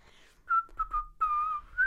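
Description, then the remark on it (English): Someone tries to whistle a few short, wavering notes, the tone breaking and sliding with breathy gaps between attempts, ending on a rising pitch. “And so he was like, can you just, like, try and whistle?”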